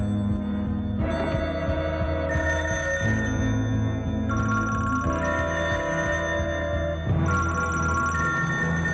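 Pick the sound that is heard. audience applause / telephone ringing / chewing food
telephone ringing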